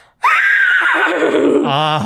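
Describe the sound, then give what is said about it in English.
A person imitates a horse neigh with the voice, one loud, sustained whinny that starts high and descends, ending in a rapid fluttering vibration. “I can also make a really good horse sound.”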